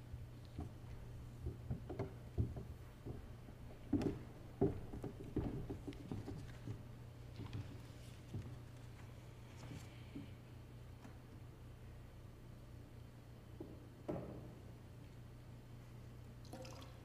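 Water drips and patters irregularly into a baptismal font, small splashes scattered over a steady low hum, quiet, with no one speaking.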